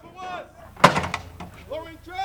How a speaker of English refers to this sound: In this maneuver, a group of soldiers shoot off some heavy artillery in a field northeast of Grayling. They're preparing for an emergency fire mission.